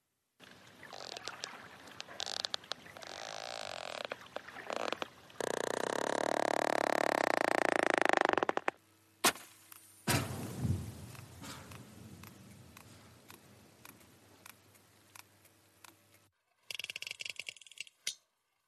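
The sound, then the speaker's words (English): Sperm whale coda clicks: sharp, dry clicks in uneven bursts and trains, broken midway by a stretch of loud rushing noise, with a few fainter click runs near the end. No voices. “These are the sounds of the mighty sperm whale, a fellow mammal that can dive almost a mile, hold its breath for more than an hour, and lives in these amazingly complex matriarchal societies.”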